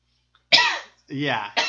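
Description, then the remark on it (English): A person makes exaggerated hacking coughs and a gravelly throat-clearing, three rough bursts in quick succession like someone imitating a cat bringing up a hairball. “Cough up your hairball.”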